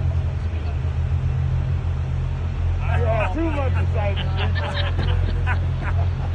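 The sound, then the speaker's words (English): A car's engine drones steadily throughout with a deep, constant rumble, heard in a video clip being played; partway through a person starts talking over the continuous motor noise. “we made a reel out of it when … was riding in one of these cars”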